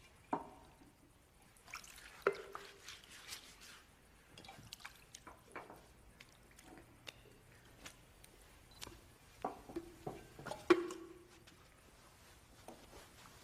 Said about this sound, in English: Then he poured some water into a wash basin and began to wash the disciples' feet and dry them with the towel around his waist.